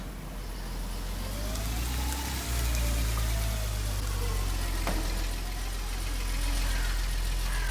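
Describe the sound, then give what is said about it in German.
A car engine idles steadily throughout, a low continuous rumble with a faint hiss over it and no voices. “Er geht zu dem Auto.”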